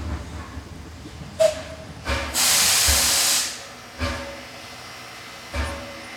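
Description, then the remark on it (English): A train arriving in Chicago, Illinois eases to a stop as its air brakes let out a long, loud hiss, followed by several shorter sharp bursts of released air over a low rumbling background. “As we come to a halt, we made it.”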